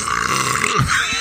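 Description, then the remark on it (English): A drawn-out, croaking burp lasting about a second, low and rumbling with a gurgling pitch wobble, fairly loud and without any talking over it, leaking out while someone tries to hold it in. “I tried rolling to hold it in so hard, and I just couldn't do it. It kept leaking out, and I was like, screw it.”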